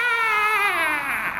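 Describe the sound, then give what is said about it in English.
A piercing, squeaking cry of a winged creature with a sharp beak, giant flapping wings, thick feathers and big talons, voiced by a person, wails out in one sustained, wavering note that slides slowly downward in pitch over about a second and a half, loud and alone. “It has a piercing, squeaking cry, which it wails out.”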